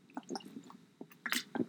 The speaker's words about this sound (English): And with that, I am drinking Life Water. Is this Life Water? It's one of those waters. Yeah, it is Life Water. With chaga tea in it. I make my own.